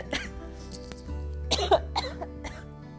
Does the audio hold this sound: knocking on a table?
no